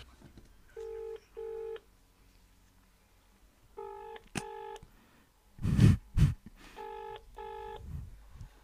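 Telephone keypad tones beep in three quick pairs while dialing an 11-digit phone number, spaced a couple of seconds apart, with a couple of loud handling thumps in between and a quiet background.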